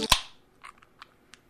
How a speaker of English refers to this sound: And with that said, do we want to do the post-credit crack? We've been gone for a little bit, but our tradition's going to stay the same. The post-credit beer crack. Absolutely. Cheers.